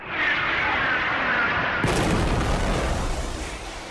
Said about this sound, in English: As the smoke clears, the old abandoned parking garage has been reduced to a smoldering pile of rubble. The explosion destroyed the freezer's hideout and burned up all the valuables of the extorted citizens of Cityopolis,